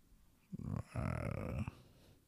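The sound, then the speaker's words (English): A person imitates with their voice a growl-like buzzing heard on a table: a short rasp, then a longer low rumbling drone lasting under a second, fairly loud, with no words spoken. “Because you would hear the buzzing on the table. It sounded like a growl.”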